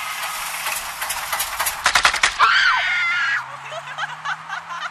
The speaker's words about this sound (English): It sounds like multiple women were shot. Yeah, you'd think that. It's actually a truck backfiring while two teenage girls scream at the top of their lungs because they think it's funny.